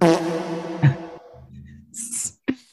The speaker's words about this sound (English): Where's the fucking fart? No. Where's the fart? Where is it? Oh, my God. I forgot what button it is. Oh, fuck. Just press one. See if it's right. Oh, I found it.